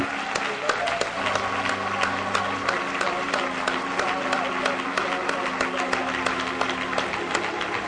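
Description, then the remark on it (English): A crowd applauds steadily, giving a hand clap for the Lord, with dense, overlapping hand claps, loud and sustained, while a low sustained tone, like an organ or keyboard, hums underneath and voices murmur throughout. “Let's give the Lord a great hand clap.”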